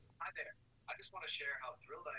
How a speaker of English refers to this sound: Oh no! My phone just went off. That was you? Okay, that was your phone. That was weird.